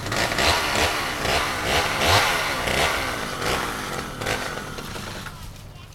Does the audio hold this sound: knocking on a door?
no